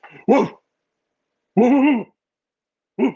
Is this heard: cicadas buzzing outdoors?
no